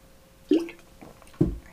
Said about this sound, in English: Sorry, needed water.